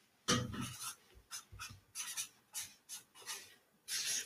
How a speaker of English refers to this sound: This is probably like ASMR for the Sharpie paper. You guys like it?